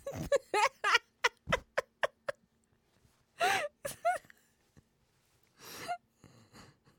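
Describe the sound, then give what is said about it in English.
Music built from recorded snoring: quick rhythmic bursts of chopped snorts and breaths, then longer, louder snore-like swells with pauses between them, with no talking. “I'm pretty sure it's like a wife just recording her husband, just, you know, synthesizing up and then combining them.”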